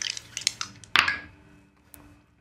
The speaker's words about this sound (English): Make me a psychology roll. Making me make so many rolls. I can't make it. Well. But I'll roll the dice.